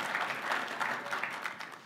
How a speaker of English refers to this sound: Well, anyway, thank you guys very much. Round of applause for our just great acting.